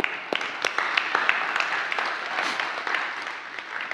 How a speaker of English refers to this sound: Yeah, we can clap.